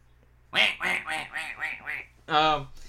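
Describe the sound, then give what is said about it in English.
A duck quacks in a quick series of five or six nasal calls, followed after a short pause by one longer, louder quack, all clear with no talking. “I only hit a few geese. One duck.”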